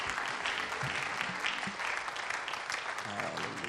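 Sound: audience hand clapping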